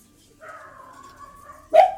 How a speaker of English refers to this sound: There's dogs in here. I feel like they keep following us.